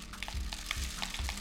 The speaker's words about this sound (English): All right, now that I've got this on, I'm gonna take my rice and pour it in.